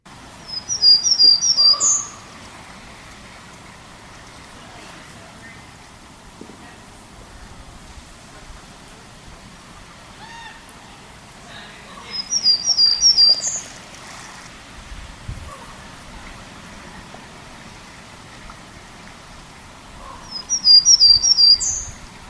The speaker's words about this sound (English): So I did record another variant, I guess I should say, of Townsend's Warbler in Totem Park a while back. And so I'll play this other variant just to give you a sense of some of the variation that there might be in Townsend's Warblers.